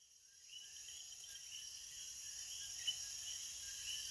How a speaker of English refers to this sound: We travel to Las Marias, Puerto Rico now with Coqui Frogs. Coquis are endemic to Puerto Rico and a national symbol for the island.